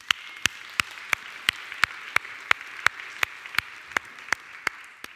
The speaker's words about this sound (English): And should we give each other a big round of applause?